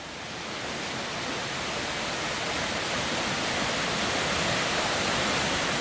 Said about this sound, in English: there was five little kind of, they're almost fairy grottos, they look like. The little pools with waterfalls coming down into them.